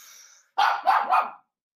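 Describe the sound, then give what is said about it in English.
A dog barks three times in quick succession, loud, with short sharp bursts following a faint whine-like sound at the start. “Your dog does not like me at all.”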